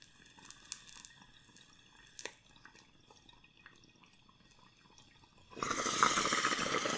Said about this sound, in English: All right, this bong load is to cycles of positivity. Cheers.